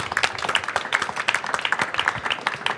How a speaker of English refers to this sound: That deserves a round of applause.